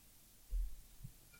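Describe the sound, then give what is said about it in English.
Two soft, low thumps about half a second apart, like a heartbeat, pulse beneath a steady faint hum with no one talking. “Is that the heartbeat in the background?”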